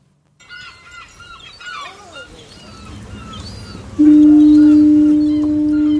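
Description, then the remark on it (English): A deep, loud foghorn blast bursts in partway through and holds steady, sounding over a busy background of chattering seabirds and gull-like calls. “Foghorns are interesting things, really, in phenomena, in that they aren't saying, come here.”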